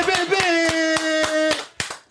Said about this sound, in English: Let's clap it up for the team, though. Let's clap it up.